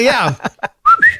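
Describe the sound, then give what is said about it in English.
A person gives a short two-note whistle, bright and close, following a brief burst of indistinct voice sounds. The whistle is loud and quick, like a summoning call. “But I never thought about whistle.”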